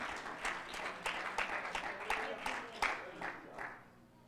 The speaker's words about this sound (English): Can we give him a hand clap of praise as you're seated tonight?